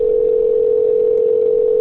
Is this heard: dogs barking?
no